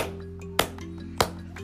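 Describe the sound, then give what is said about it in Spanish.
Two sharp hand claps, evenly spaced about half a second apart, ring out over a steady low hum, with no talking. “Vamos a aplaudir tres veces. We're going to clap three times.”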